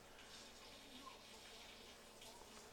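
Steady rushing water from a waterfall pours continuously without a break, a soft, even hiss that sounds fairly quiet, with no clear voices over it.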